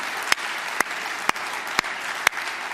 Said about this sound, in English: So would you with me, everyone together with one big shout, would you guys just clap and cheer and high five moms? You know what I'm saying? Come on. Good job, moms. We love you.